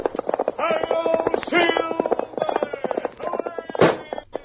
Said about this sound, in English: Who's popping the balloons?